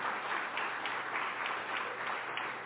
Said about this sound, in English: Yeah, y'all definitely should clap for that. Thank you.